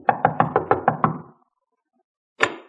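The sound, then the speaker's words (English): About six quick, firm knocks rap on a wooden door in a steady rhythm, then a second of silence before one sharper thump. Fairly loud, with no voices. “Knock on the door”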